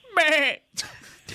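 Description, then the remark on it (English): A person mimics a goat with one loud, wavering bleat lasting about half a second, followed by a short pause and then people talking and laughing. “Can you make a goat noise?”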